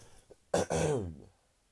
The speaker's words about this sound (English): Whoa, I need to cough, but I don't want to cough in your ear holes. Give me a second, guys.